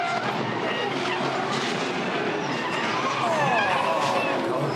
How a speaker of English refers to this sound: It's a great pile of cars, all doing 150-odd kilometres an hour, just drive straight into the scene.